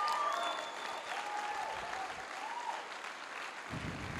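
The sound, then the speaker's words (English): An audience at a sermon claps for Jesus steadily for about four seconds, a dense, even patter of many hands with a few faint voices and whoops rising over it. “Come on, let's give Jesus a great clap.”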